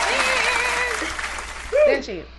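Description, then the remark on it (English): Steady crowd applause for Bud Talk STL, a dense wash of clapping that holds fairly loud, with high cheering whoops and shouts rising over it near the end. “Y'all clap it up for Bud Talk, STL's on.”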